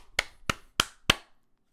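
A hand slaps a butt cheek four times in a steady, even rhythm, each smack sharp and crisp, with silence between and no talking.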